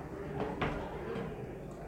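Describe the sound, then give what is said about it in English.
A door is pushed shut with a soft, muffled thud and a brief scrape against a low room hum. “can you please close that door if that's okay?”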